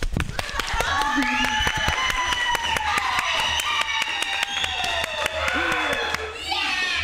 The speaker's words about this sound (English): Hey guys, welcome to the Lab Fab Show. Clap.